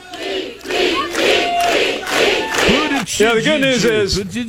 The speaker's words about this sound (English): And so the crowd chants down the chanter.